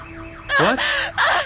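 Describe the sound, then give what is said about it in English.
A car alarm blares loudly, cycling through harsh, wavering electronic tones in three rapid, pulsing bursts after a fainter warbling start. “I can't hear you over that car alarm.”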